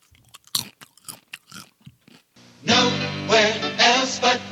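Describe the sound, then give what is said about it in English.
Crunchy chewing of someone comfort eating, with irregular bites and wet mouth sounds for a couple of seconds, before loud music abruptly takes over. “This chewing you're hearing.”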